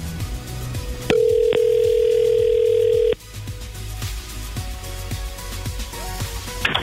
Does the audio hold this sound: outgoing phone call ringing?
yes